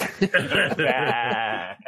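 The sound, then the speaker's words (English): A goat bleat sound effect: a loud, wavering, nasal cry that quivers for about a second, preceded by a few short bleating bursts, heard alone without talking. “Yeah, where's the goat bleed of randomness?”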